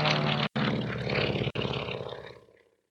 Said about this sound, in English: Seems one of your fellow pilots has engine trouble. Amphibian. Sea otter, by the way. Plenty of places to set her down with all this flooding. Appears to be heading towards Thrapsley.